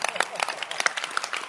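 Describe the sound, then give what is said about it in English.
A church audience applauds a question with dense, overlapping hand claps, a steady crackling patter of many hands at moderate loudness, with faint voices mixed in. “I want to ask you to clap your hands for such a question.”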